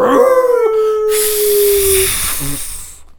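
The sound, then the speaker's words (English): A voice imitates a long wolf howl, one sustained wavering tone that slowly drops in pitch over about two seconds, joined midway by a loud rushing hiss of air that fades out. “It just howled and farted.”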